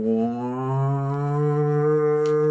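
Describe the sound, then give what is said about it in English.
A person vocally imitates a siren that goes off as red lights come on, with one long, loud, steady hum that slowly rises a little in pitch across about two and a half seconds, with no other talking. “And then there is, like, this siren that goes off. It goes like...”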